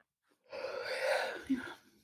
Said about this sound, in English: I did a big yawn, but that's not a reflection.